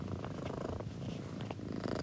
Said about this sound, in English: And if you're wondering what that weird alien noise sound is, it's my cat, Lewis, who purrs like that sound that Jodie Foster heard in Contact.